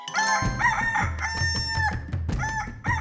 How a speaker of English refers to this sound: "Show me what you can do, cockerel," cried he, and the cockerel stood up and flapped his wings 3 times, crowing with a voice like a trumpet.